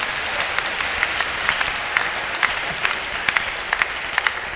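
A crowd applauds steadily, dense overlapping claps forming a continuous wash of sound with sharper individual claps popping out irregularly, fairly loud, with no voices over it.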